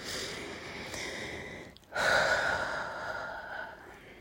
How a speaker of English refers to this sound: For now, we'll just focus on deep breathing and being glad that we can draw breath.